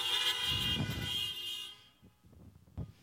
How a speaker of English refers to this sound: Come on, somebody honk your horn. That's funny.